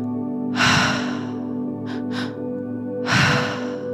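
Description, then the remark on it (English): Two long, deep breathwork breaths rush in and out, each a broad airy whoosh, separated by a quieter short sniff-like pair, all over a steady low background hum, fairly loud. “Keep breathing.”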